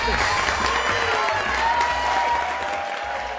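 An audience applauds loudly and steadily, a dense wash of clapping that holds at an even level for a few seconds with faint vocal sounds mixed in.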